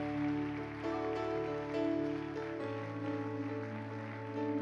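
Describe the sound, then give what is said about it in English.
A church audience gives Jesus a hand clap, many hands clapping in a dense, continuous patter over sustained organ-like keyboard chords that shift to a lower chord partway through. “Come on, let's give Jesus a hand clap.”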